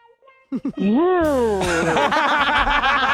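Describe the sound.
A person imitates a lovestruck bull in answer to a quiz question, with a short, swooping, crooning moo, then bursts into loud laughter that carries through to the end.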